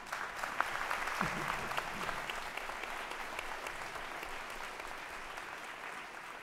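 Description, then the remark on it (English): Steady audience applause, a dense wash of many hands clapping at an even level throughout, with a faint murmur of voices mixed in near the start. “that was the first applause line.”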